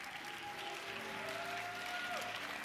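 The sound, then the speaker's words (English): A church audience claps for Jesus after a sermon and prayer, a dense, steady wash of applause that holds at an even level throughout, with faint sustained musical tones humming beneath it. “Come on, give Jesus a great hand clap.”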